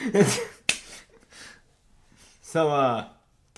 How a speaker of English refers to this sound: that is Noah slapping me in the face